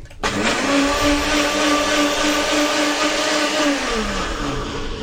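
A compact Nutribullet blender motor whirs steadily at a high, constant pitch for about five seconds, with a gritty churning texture as a quarter cup of pre-soaked sunflower seeds and one cup of water are blended into sunflower seed milk; no one speaks.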